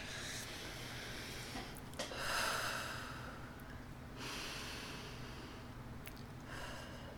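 A dog snores and snorts in slow, raspy cycles, with a louder snuffling snort near the middle and steady noisy breathing between. No one speaks.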